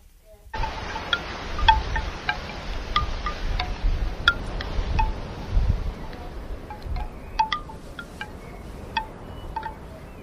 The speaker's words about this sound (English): You can hear it a lot better now. The wind in the background. Isn't that cool? This will definitely help us relax, guys. Birds, wind chimes, wind. What more could you ask for?